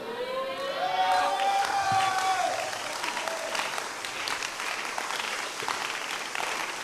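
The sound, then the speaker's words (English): An audience claps for Jesus steadily throughout, a dense, sustained wash of applause with some cheering, while a high tonal voice or whistle rises and glides briefly near the start. “If you clap better for Jesus, I will teach you something.”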